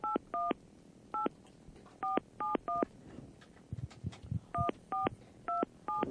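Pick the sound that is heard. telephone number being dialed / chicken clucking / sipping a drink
telephone number being dialed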